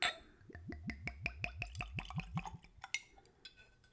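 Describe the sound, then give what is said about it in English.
Whiskey glugs out of a screw-cap bottle into a clean Glencairn glass, neat with no ice, in a quick, steady run of about a dozen hollow gulps, then trails off into a few light drips and clinks. “And we'll go for a pour.”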